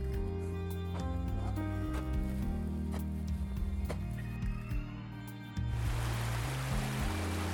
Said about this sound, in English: I listen to that water and I think about closing my eyes. You can almost hear the surf and the waves of the sea roll.